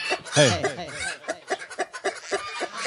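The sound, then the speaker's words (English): A person imitates a duck, letting out a drawn-out nasal quack followed by a quick string of shorter, choppy quacks, fairly loud. “Let's hear the duck again.”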